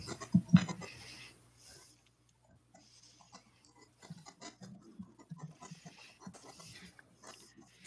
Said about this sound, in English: It sounds like an old school printer. Like. Let me see if you can hear this.